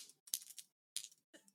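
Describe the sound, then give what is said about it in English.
A quick rattle of dice rolled during a tabletop role-playing game tumbling across a hard surface, a burst of light clicks and clacks that settles on 11, then a few scattered taps and a sharper knock at the end, with no talking. “Holy shit, that's an 11 on the dice plus one.”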